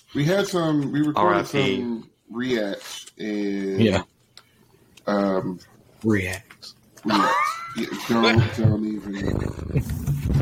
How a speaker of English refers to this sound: Whoa. The cat's not even happy about that one.